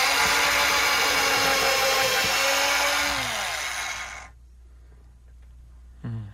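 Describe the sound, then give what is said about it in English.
A loud power drill whirs steadily for about four seconds, its pitch sagging as it winds down and stops, followed by near silence and a brief clunk at the end. “It was a drill.”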